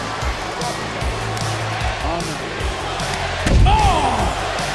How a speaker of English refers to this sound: DDT onto the steel chair by Rhea Ripley.